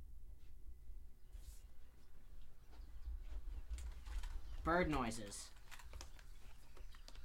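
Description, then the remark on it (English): A single short, warbling coo-like call, likely a person imitating a bird, rises out of quiet rustling near the middle and lasts about half a second. “Bird noises.”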